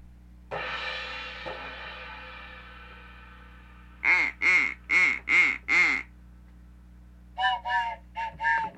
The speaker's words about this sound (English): Oh, it's my phone effect.